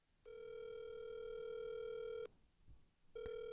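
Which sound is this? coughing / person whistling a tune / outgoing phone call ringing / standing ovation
outgoing phone call ringing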